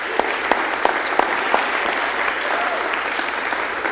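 Audience applause, a dense steady patter of many hands clapping, with a few sharper claps standing out, and no voices.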